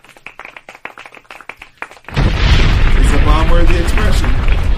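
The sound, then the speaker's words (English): A few scattered, sharp claps, then a sudden loud burst of sustained applause-like noise that fills the rest of the moment, dense, with a crowd-like roar underneath. “Clap it.”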